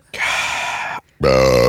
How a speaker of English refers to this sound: have you had a chance to burp into the microphone yet? I just did. I just warmed up to it.